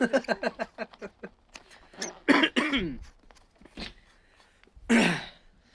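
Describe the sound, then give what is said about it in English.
A burst of harsh, unrestrained coughing: a rapid string of short hacks, then several heavy, throaty coughs and a final loud one, with no talking. “The sound of the unrestrained coughing means it's time for us to go.”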